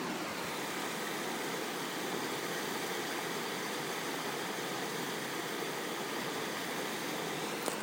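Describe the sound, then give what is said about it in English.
A babbling brook flows in a steady, unbroken rush of water, a soft hissing wash with a faint bubbling texture that holds an even level throughout, with no voices. “Here, let's listen to this babbling brook.”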